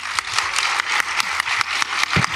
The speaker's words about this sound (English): So I would like to, one more time, a big round of applause for our panel, our architecture panel. Give it up.